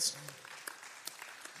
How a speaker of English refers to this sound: And yeah, let's clap for the Lord.